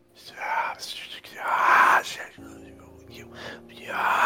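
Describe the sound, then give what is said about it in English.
A flood of breathy, overlapping whispers rushes in several swelling waves, no words clear, heard when the one on the southwest, in the middle of the wall, is cracked open onto a pitch-black room. A low, steady drone joins partway through beneath the hissing voices. “When you crack open the one on the southwest that's kind of in the middle of the wall, you hear a flood of whispers.”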